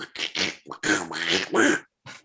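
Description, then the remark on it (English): A voice makes gross, nasal duck-like quacking noises in several loud, raspy bursts, with a short pause before one last squawk. “Don't make those gross noises at me, duck.”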